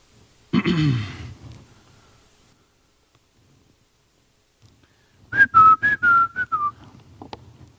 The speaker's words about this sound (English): I'm not really sure why I whistled. I just felt like the right thing to do. Sure the media team loved it.